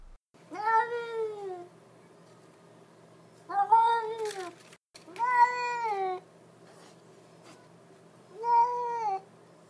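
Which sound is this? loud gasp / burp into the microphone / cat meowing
cat meowing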